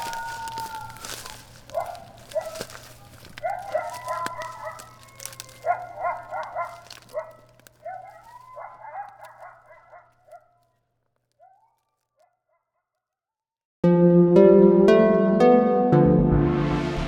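A pack of coyotes gives a string of rising yips and short wavering howls, tapering off into near silence before a burst of music takes over.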